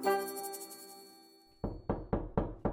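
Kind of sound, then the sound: household object, knocking on a door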